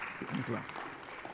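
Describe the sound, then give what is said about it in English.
An audience claps in a steady, dense patter for a little over a second, with a voice briefly calling out over the applause. “You need to clap better.”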